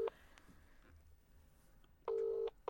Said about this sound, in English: so let's just give him a little call on the old telephone. I've got my phone.